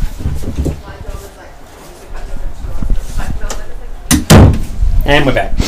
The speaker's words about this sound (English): Can we take a Matt and Jerry break and just open and close the door?